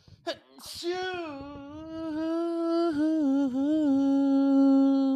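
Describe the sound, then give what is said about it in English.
A quick intake of breath and a sharp sneeze burst out near the start, followed by a long, steady voiced tone that holds for several seconds. “Are you booming my sneeze?”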